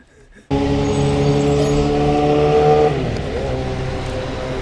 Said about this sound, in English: There's a motorcycle.